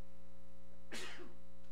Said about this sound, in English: I have to sneeze.